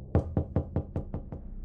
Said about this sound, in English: I was woken up by a series of knocks on my heavy wooden door. I have a rule. One series of knocks is just people messing with the neighbors, but if they really need something, they'll knock twice. There came the second series of knocks.